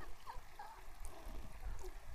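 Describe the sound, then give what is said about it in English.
A shallow stream at a water crossing burbles steadily over rocks, a continuous soft rush of water with small gurgles and trickling notes, with no voices. “We got to cross water. Again.”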